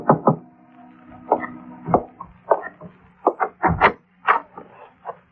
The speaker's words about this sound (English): At 7:45, there was a knock on my door.